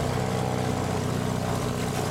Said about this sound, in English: At a nearby airport, we squeeze into a small airplane to continue the search.